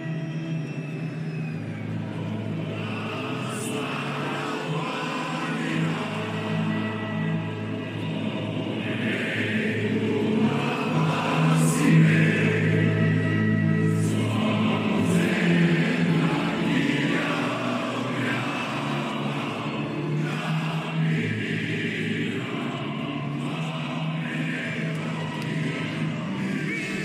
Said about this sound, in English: That's the visiting crowd of Bulgarian soccer fans at a 2019 game at Wembley Stadium.